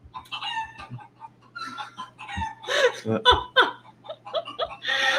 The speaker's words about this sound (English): And now a chicken.